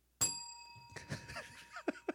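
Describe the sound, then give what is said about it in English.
A single bright bell ding with a sharp strike and sustained ringing overtones that fade slowly, followed by indistinct voices and laughter underneath. “I love the bell.”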